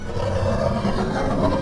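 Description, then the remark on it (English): An incoming giant space lamprey lets out a deep, rumbling roar, one continuous growl that stays loud and steady throughout, heavy in the low end, with no voices over it. “There! Incoming giant space lamprey.”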